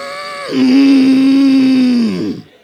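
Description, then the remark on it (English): Voices imitate a cow's lowing with one long, low, steady moo lasting nearly two seconds, its pitch sagging as it trails off at the end. “Come on, help me, some cow sounds in here.”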